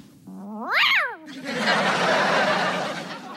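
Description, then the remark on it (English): A single loud cat yowl, from a cat hit by a thrown disc, rises in pitch and then falls away over about a second, followed immediately by a sustained wash of noisy, rushing sound. “So Al does the disc throwing, and he hit a cat.”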